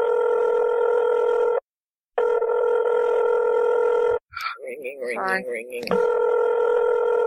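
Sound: phone call ringing tone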